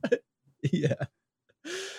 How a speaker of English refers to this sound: But it's making me burp like no other. I know. Good Lord. So bubbly.